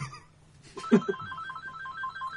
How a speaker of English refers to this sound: Phone ringing.